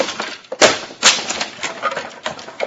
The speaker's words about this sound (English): No, nothing. You villainous dog. You've destroyed my trunk completely.